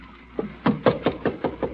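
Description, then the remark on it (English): A rapid, steady series of about seven knocks on a wooden door, moderately loud, the first tap softer than the rest, with no voices. “I'll be right next to you behind the door. I'll be listening and watching. Now open it.”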